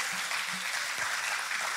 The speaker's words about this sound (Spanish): Y allí usted está diciendo tal vez: bueno, pero Dios le está, amén, aplaudémosle al Señor.